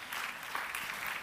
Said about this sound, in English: Please, let's welcome them, can we please, with applause.